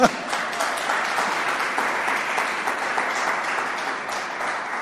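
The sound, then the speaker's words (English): An audience at an Alberta funding announcement claps steadily for about five seconds, a dense, even patter of many hands with no pauses and no voices rising above it. “So I saw somebody trying to clap. That's good.”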